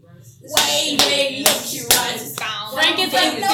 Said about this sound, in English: Come on, sing for us. Come on. I'll clap along, I promise.